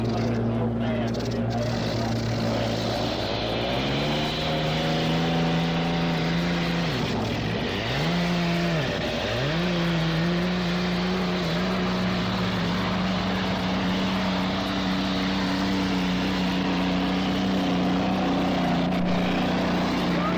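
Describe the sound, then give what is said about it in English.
A racing boat engine turns over and comes to life on the water near a breakwater at the start of a race, settling into a loud, steady drone with a couple of sharp dips and surges in pitch as it revs, amid background noise. “Hasn't started its engines. It's floating out in front of us here.”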